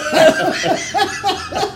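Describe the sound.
A man fakes a run of coughs, about five short, breathy bursts in quick succession, tinged with laughter.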